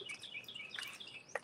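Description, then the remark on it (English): Birds chirp outdoors in a quick series of high, bright tweets, fairly faint, with one sharper call near the end and no talking. “You got the birds chirping out here, man.”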